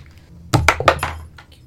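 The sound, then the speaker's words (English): A twelve-sided die (d12) is rolled and clatters across a hard surface in a quick burst of four or five sharp, bright knocks, then one last faint tick as it settles. No one speaks. “Roll the d12.”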